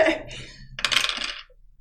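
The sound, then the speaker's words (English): Dice clatter across a hard table surface during a shooting roll in a tabletop game, a brief rattle followed by a louder, tumbling roll that settles after about half a second. Fairly crisp, with no voices. “8 and a flaming sword. The dice? I'm not sure on that particular die.”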